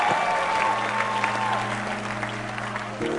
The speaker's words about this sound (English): Put your hands together for the Lord once again.